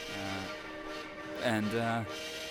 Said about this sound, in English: Looks like the train's about to take off.